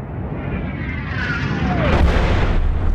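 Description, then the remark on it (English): A meteorite impact explosion: a thin whistling tone slides downward over a constant deep roar, then a broad rumbling blast swells and lingers, loud and dense, with no voices. “As the steam rises from the impact site of the meteorite, a solitary pair of figures make their way across the otherwise empty tracks of endless snow.”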